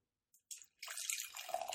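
Dark cherry and vanilla Tart of Darkness beer, showing a red hue, pours into a glass: a couple of brief splashes, then a steady, fizzy stream whose pitch climbs as the glass fills. Quiet, with no talking.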